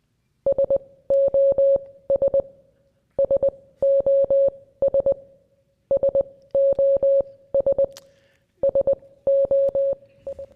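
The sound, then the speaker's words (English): Morse code telegraph beeps: a steady, mid-high electronic tone keyed on and off in quick dots and longer dashes, grouped into bursts with short pauses between, loud and clear with no voices. “Morse code. It's just a series of dots and dashes.”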